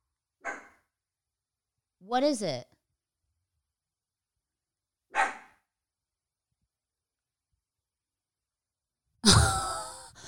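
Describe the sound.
A dog named Nina gives a few sharp, isolated barks spaced several seconds apart, the last one loudest, while staring into a dark hallway and barking at something, with a person speaking briefly between the barks.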